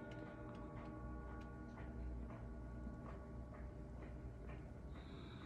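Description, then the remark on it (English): A wind-up clock ticks steadily, roughly two even ticks per second, over a constant low mechanical hum. No one speaks. “She's like, oh yeah, like if I have to come and fix the clock.”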